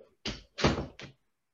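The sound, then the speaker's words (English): A door being shut, a quick series of three solid thuds and rattles over about a second, with no talking. “I don't want to say I love you to someone before they shut the door in my face.”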